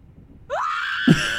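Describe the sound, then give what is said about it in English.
A single loud, sustained recorded scream rises sharply in pitch and then holds steady, shrill, with a brief low thump partway through; no one is talking. “If you hear a recorded scream, then chances are we'll probably be lenient because some of these are hard.”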